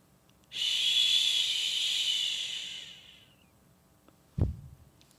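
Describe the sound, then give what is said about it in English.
A voice imitates a thunderstorm: a long, steady breathy hiss like rushing rain that fades over about three seconds, followed after a pause by one short, sharp low burst like a thunderclap. “What does a thunderstorm sound like?”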